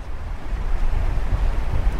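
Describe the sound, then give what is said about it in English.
Strong, biting wind roars steadily across an open North Sea beach at Lowestoft under a fairly clear sky, with low buffeting gusts rumbling and a constant hiss of surf beneath. No voices are heard. “Growing up in East Anglia, I spent much of my holidays on North Sea beaches in biting wind like this.”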